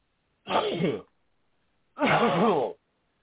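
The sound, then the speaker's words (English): Two loud, strained coughing bursts separated by a short pause, each rough and voiced with a wavering, groan-like pitch, the second burst longer than the first. No talking is heard. “You got to keep coughing, dear.”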